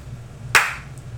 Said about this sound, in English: That's pretty fast. It's a pretty fast slow clap.